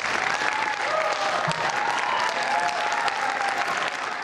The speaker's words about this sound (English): Friday afternoon, Yovanovitch left the hearing room to a round of applause.